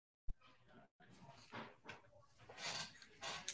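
A female dog, Gingerbread, makes a string of short noises, snuffly grunts and whines in uneven bursts, growing breathier and louder toward the end.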